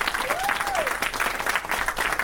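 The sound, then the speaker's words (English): An audience at a panel discussion hosted by the SAA Institute in Liverpool applauds the panellists steadily, dense overlapping claps forming a loud, even wash of sound for the whole stretch, with a faint rising-and-falling whistle-like tone briefly in the first second. “And a big thank you to our panellists, with a round of applause”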